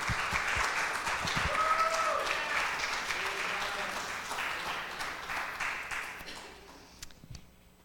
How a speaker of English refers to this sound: Oh, give her another round of applause, guys.